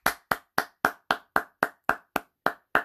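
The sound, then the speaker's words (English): Applause on the Birdman Show as a guest is introduced: about eleven sharp, crisp hand claps at a steady, even rhythm, roughly three or four per second, each decaying quickly, with no voices. “Without further ado, everybody, put your hands together for”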